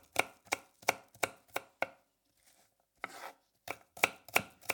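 Knife chopping food on a board in a steady rhythm of sharp, crisp strikes, a brief pause, then the chopping resumes at a similar pace. No voices.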